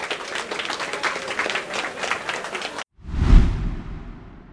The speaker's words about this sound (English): It seems like our time is up. I want to thank 500 Startups for inviting us and putting on this event, and let's give our panel a huge round of applause.